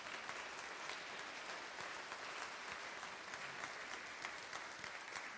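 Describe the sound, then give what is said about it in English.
Sustained applause from a large audience at a Mother's Day service, a steady dense patter of many hands clapping at an even level throughout, with no voices over it. “With all that applause, maybe I should sit down now.”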